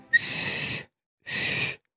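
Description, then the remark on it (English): Two breathy, mostly toneless whistling attempts, each about half a second long with a pause between, imitating the voices of the Clangers puppet creatures. They come out more as airy hiss than clear notes. “Sorry, not so good at whistling as my grandfather, to be honest with you.”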